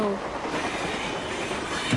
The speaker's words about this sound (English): You make those trains go any faster and they won't stay on the track.